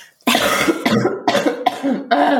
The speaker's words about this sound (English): Sorry. I'm just going to cough again.